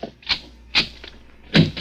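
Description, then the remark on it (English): A door being opened, heard as a series of short, sharp clunks and latch clicks spaced unevenly, moderately loud, with no voices. “Open the other door”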